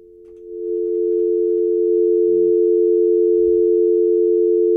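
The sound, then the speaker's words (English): A steady, loud telephone dial tone, given for a call presented as Philip Rivers calling up Chris Greer, hums continuously for the whole stretch, with a couple of faint low thumps beneath it and no talking. “Give me a dial tone.”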